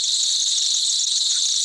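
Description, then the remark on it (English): A loud, continuous cicada buzz, a dense high-pitched drone that holds steady without pause, alone with no voices. “Yo, man, I'm no scientist, but I'm pretty sure that means Joe Biden is now going to turn into a cicada.”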